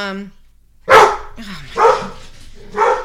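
A dog barks loudly and excitedly as someone arrives home and opens the door: three sharp barks spaced about a second apart, after a brief high-pitched whine at the start.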